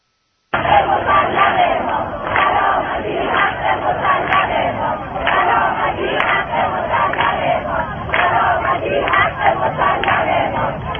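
A large crowd of protesters chants loudly in unison outside the Fars governor's office in Shiraz, Iran, protesting satellite jamming signals. Voices rise and fall in rhythmic bursts of shouted slogans, continuing steadily for several seconds without pause.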